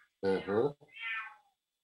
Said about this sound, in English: It's been meowing all night.